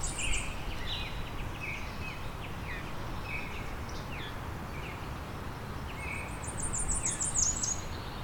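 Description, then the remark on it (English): A very high, thin series of rapid, evenly spaced notes rises out of a steady outdoor hiss near the end, with other birds chirping lower throughout; a Cape May warbler's song. “Here's some Cape May warbler song.”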